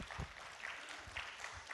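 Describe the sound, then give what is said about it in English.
A church audience at Crossroads claps together as a morning clap offering to worship the Lord, a dense, steady wash of many hands, fairly soft throughout with no voices standing out over it. “Let's worship our Lord with a clap offering.”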